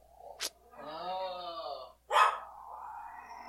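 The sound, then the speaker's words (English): A dog growls at something in a drawn-out, rumbling tone lasting over a second, framed by two short, sharp bark-like bursts before and after, with no one speaking. “growling at something.”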